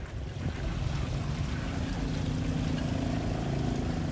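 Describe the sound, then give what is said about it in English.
Riverside ambience on the Chao Phraya River in Bangkok during the rainy season, the day after it flooded, dominated by a steady, rumbling boat engine, its droning hum rising slightly after a moment, with washing water and wind underneath and no voices. “So this morning, I've tried to get as close as I can to the Chao Phraya River.”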